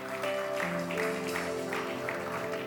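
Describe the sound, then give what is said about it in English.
An audience claps steadily as a crowd, a dense wash of many hands mixed with sustained keyboard or organ tones, giving the Lord a clap offering in the name of Jesus. The clapping is fairly loud and continues throughout. “In the name of Jesus, give the Lord a clap offering.”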